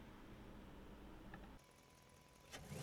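A car engine rumbles low and steady, drops to a quieter lull, then catches with a sharp burst and starts revving up toward the end. No one speaks.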